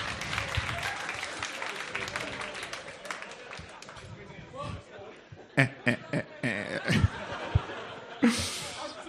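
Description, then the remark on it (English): An audience at a stage show applauds a contestant with dense, steady clapping for several seconds, then it thins into a few sharp, separate claps and some scattered laughter, ending with a brief burst of noise. “Ladies and gentlemen, give him a round of applause.”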